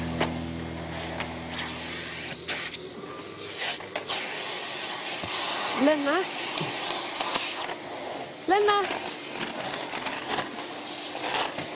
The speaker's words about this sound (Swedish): Vad gör du? Jag städar! Ska du inte stänga av dammsugaren? Jo, så!